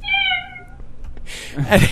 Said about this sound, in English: So I decided to try something else, and I found a cat soundboard. Oh God. And I started playing it off my computer while she's already freaking out.